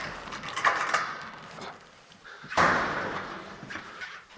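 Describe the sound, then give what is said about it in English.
Two heavy metallic clunks, a few seconds apart, as security doors and gates are unlocked and swung open in a national museum's storage warehouse, leading to a corridor lined with cabinets, each ringing briefly, with no one talking. “had to swipe us through a few doors, then unlock gates that led to a corridor lined with cabinets.”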